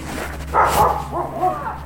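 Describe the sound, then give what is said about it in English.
A dog named Gunner, with husky eyes, barks at a visitor approaching a house: a sharp bark followed by a higher, more yelping one, over a low steady background hum with no talking. “She's barking at me, sorry.”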